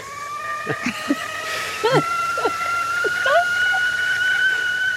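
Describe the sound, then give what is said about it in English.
A kettle whistles as it boils, a steady high-pitched tone that swells in and holds throughout, rising slightly in pitch, with short warbling, meow-like cries breaking over it. “Oh, the kettle is warmed. Sounds like we're ready.”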